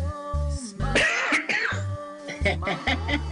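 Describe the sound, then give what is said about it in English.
A loud run of coughs and throat clearing, several rough bursts in quick succession with short gaps between them, with no speech alongside. “That's LWAF cough cough cough MOYT.”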